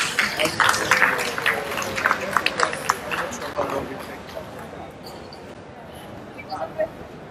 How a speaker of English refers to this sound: So please help me bringing a round of applause to our presenter of today